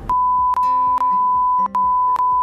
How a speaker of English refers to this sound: It's going to be actual beeps now. Watch this.